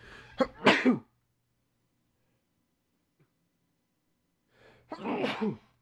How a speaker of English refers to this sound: Oh, sneezes are coming. Ready? Go ahead.